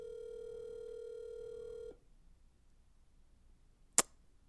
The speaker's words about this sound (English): So I'm just calling. This guy's not going to answer his phone now.